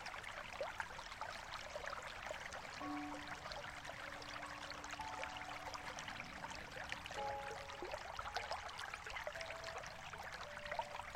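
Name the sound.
flowing stream water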